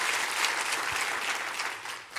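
A church audience claps their hands during a sermon on prayer, in a dense, steady wash of applause that holds at an even level for a couple of seconds, then tapers slightly toward the end.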